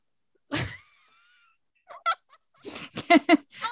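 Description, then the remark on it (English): A person imitates a bird, letting out one harsh, abrupt squawk followed by a pause and then a burst of short, choppy squawking cries, fairly loud. “Because I squawked”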